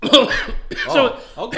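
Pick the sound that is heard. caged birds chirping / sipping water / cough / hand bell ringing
cough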